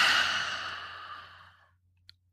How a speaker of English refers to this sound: We're going to begin by inhaling through our nose, 3 quick sniffs, and then we're going to exhale with your mouth. So let's try this together. Ready? Inhaling 3 quick sniffs. And exhale with your mouth.